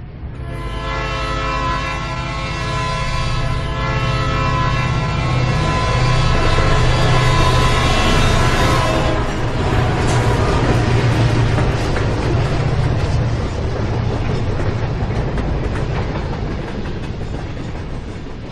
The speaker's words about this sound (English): Well, they come and they go. You know, they come right at you, and they're so loud, and then they... Yeah, to get a good train sound is a... You have a good sound recordist when you capture a good train sound.